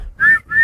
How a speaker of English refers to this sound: And that's it. Blow the whistle. Blow the whistle.